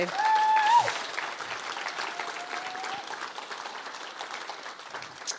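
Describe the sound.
A room full of people claps steadily for several seconds, a dense, sustained applause with a brief spoken word and a faint tone near the start.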